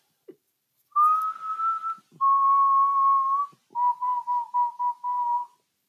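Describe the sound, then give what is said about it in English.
A person whistles a bird call imitation: two long steady mid-pitched notes, then a quick run of five or six short chirping pulses ending in a held note, alone without talk. “You gotta say like, have you heard the language of the birds?”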